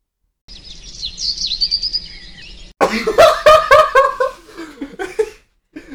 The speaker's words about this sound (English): Bird song!